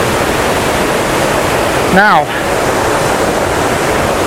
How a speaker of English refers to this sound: I'm going to get wonderful access to this waterfall. I'm almost on it now. I can't quite get across to you just how titanic this thing is. Kilt Rock is a cliff waterfall,